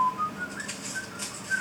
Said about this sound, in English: he's whistling away Scott Joplin